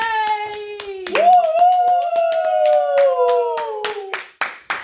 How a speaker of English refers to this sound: Are they just clapping because I said I'm out of a relationship?